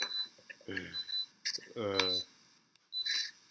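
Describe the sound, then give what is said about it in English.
An electronic alarm beeps in short, high-pitched bursts at irregular intervals, while a voice makes brief rising vocal sounds in between. “What is that beeping? Whose alarm's going off?”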